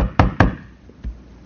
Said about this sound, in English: And he's been knocking.